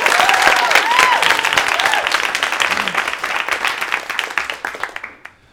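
An audience at a live storytelling night breaks into a dense, loud round of applause for a storyteller, with a few rising whoops or whistles early on, then the clapping thins out and fades away.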